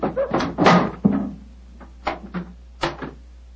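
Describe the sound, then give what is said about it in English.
The heavy door of the elephant house is unlatched and pulled open by the keeper: a cluster of wooden clunks and thuds, then a few scattered knocks and creaks fading out over a low steady hum. “Why in thunder doesn't the keeper open the door?”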